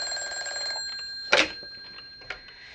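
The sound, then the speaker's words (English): A telephone bell rings with a rapid metallic trill for under a second, then cuts off, followed by a sharp clack and a lighter knock like a receiver being picked up. “Answer the phone”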